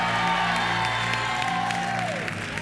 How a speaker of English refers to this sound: So you're clapping. Is that you clapping?